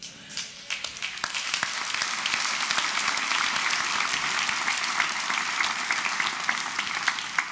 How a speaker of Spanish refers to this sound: Ese aplauso estuvo así como medio pegajoso, como que, permítame elaborar sobre esto.